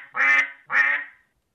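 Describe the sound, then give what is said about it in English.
Two loud, nasal Canada goose honks in quick succession, each about half a second long, with nothing else in the background. “you hit him with a Canadian goose.”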